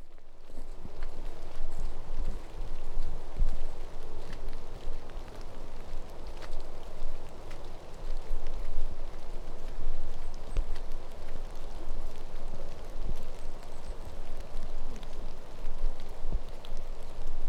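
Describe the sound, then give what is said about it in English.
Steady rain patters on leaves and ground in a beech forest on 18 November, a dense continuous hiss with scattered drips, moderately loud and even throughout, with no voices. “Don't mind getting rained on to look up at this.”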